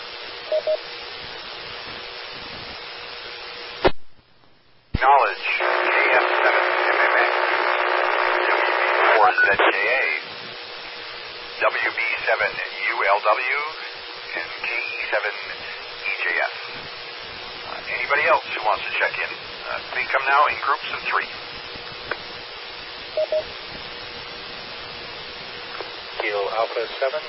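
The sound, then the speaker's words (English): Narrowband radio audio with a stretch of garbled, overlapping transmissions, two stations keying up at once (doubling), one of them a station whose call sign ends in Tango, followed by choppy bursts of voice over steady static hiss. “and there was a station that ended in Tango who doubled with him.”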